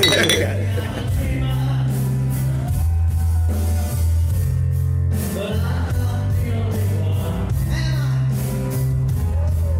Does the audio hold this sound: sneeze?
no